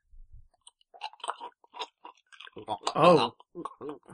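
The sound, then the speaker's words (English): Crunching and grinding as an ice cube is bitten between teeth, a series of irregular crackly bites building to one loud, drawn-out crunch, followed by a few smaller chews. “Please don't spit that ice cube onto the microphone. Just crunch it betwixt your teeth.”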